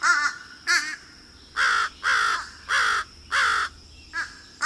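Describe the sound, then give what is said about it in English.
A fish crow gives a series of about seven nasal, hoarse caws, loud, with two short calls, then four longer drawn-out ones, and quick calls at the end. “So, if you hear a bird in your neighborhood that sounds like it could use some cold medicine, keep an eye out for fish crows.”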